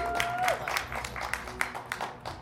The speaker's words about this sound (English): A nice big round of applause